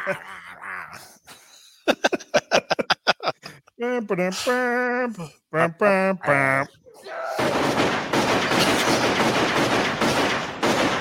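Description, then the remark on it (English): Rapid bursts of automatic gunfire from a movie crackle in quick succession, broken up by loud shouting voices, before a long, harsh wash of noise fills the rest of the scene. “One of the things I loved about that movie was they kept the gunfire aesthetic from the TV show.”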